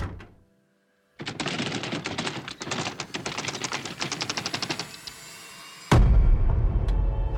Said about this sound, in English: What in the hell are you knocking like that for?